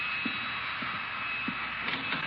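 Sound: vacuum cleaner running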